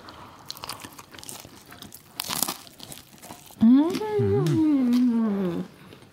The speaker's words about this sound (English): Oh, the capirotada is ready. I invited my boo to enjoy it with me. Okay, ready? Take a crunch.